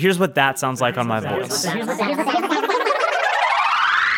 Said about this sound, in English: And then finally you automate the rate at which those repeats occur. So they like accelerate in frequency over time. And this creates this like rising effect. So here's what that sounds like on my voice.